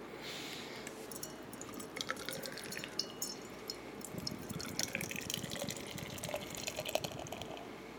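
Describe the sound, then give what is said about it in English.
A triple India Pale Ale pours steadily into a glass, a continuous gurgling splash topped with a crackly, fizzing hiss of foam that shifts in tone about halfway through. No one speaks. “As I wait for my foam.”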